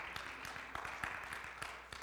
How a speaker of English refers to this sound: Thanks for four of you clapping. You're the best choir we've got, too.